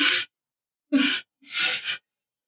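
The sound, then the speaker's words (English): A voice imitates a beast sniffling: three short, breathy, hissing bursts with pauses between, the last one longer and doubled, with no talking alongside. “It looks at you and sniffles again, and then as it hears you speak, you can see its ears like twitch.”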